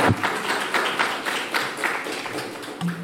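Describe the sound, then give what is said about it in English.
A round of applause from a crowd applauding themselves for getting involved in a gospel outreach festivity: dense, steady clapping at even loudness for about three seconds, with faint rhythmic pulses in the texture and no talking. “Well, why don't you give yourself a round of applause for getting involved with that.”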